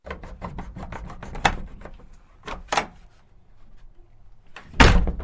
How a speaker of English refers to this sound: Opening the doors now.